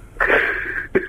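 A loud sneeze with a long, breathy, hissing burst, followed by two quick, sharp bursts of breath. No one speaks.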